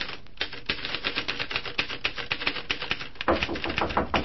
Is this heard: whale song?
no